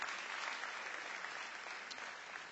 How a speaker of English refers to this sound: Someone give the Lord a hand clap for that testimony.